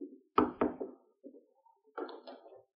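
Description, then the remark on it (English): Three quick, solid knocks from a visitor rap on a wooden door, followed by a pause and some softer, muffled sounds as the knocking stops. “I'll answer the door.”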